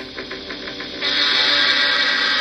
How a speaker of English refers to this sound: It sounds like a train from Polar Express.